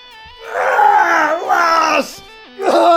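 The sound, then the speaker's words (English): A loud, theatrical cry of pain from one voice as an arrow is pulled out, drawn out in three strained, groaning bursts with brief breaks between them. “She reaches her quiver, she pulls the arrow back, she pulls, and Jorgen screams”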